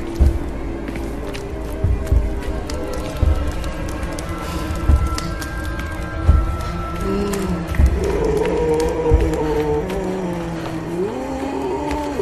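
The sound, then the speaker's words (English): Heavy, deep booming footfalls of a giant troll thud at a slow, steady pace, roughly every second and a half, over a low droning tonal background with no one speaking. “I want to say for a second, those booms you heard are not part of the soundtrack. They are this thing's footfalls.”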